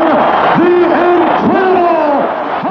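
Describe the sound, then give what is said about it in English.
A huge crowd pop: a loud, sustained roar of many voices cheering and yelling at once, with rising and falling shouts layered throughout and no pause in the noise. “Let's hear this pop. Huge pop.”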